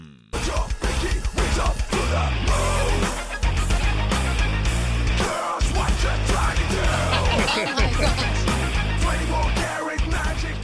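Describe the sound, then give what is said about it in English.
A pop tune reworked as heavy metal plays loud and dense, with crunching distorted guitars and pounding drums driving steadily throughout, broken only by a few brief dips, and no voices speaking over it. “What if they turned it into a metal song?”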